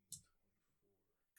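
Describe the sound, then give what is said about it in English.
A single sharp clatter of dice hitting a table as a damage roll in a tabletop role-playing game, followed by quiet murmuring voices and another brief click at the very end. “Roll a drop dice. Yeah, golly. That's a wonderful sound when it's not coming from the DM.”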